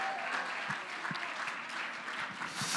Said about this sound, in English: Clap your hands one more time unto the Lord in Jesus' name. Hallelujah. Thank you, Lord. Thank you, Lord. Clap them some more in the name of Jesus.